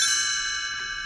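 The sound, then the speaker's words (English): A bright, shimmering chime rings out alone, its high bell-like tones sustaining and fading gently over about a second: Tinkerbell's chime from Disney's 1965 read-along book-and-record series, signaling that it's time to turn the page. “In 1965, Disney had pioneered a similar trend as they started a read-along series with the catchline, "See the pictures, hear the record, read the book," in which Tinkerbell's chime lets you know it's time to turn the page.”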